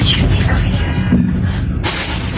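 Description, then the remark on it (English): A man swings a metal oxygen tank at random vehicles in Richmond, in the area of Stevenson Highway and Number 5 Road, smashing cars: loud, heavy bangs and crunching impacts in a dense, noisy stretch, with a brief dip in the middle before the clatter surges again. “Yes, a man swinging what appears to be a metal oxygen tank at random vehicles, smashing several.”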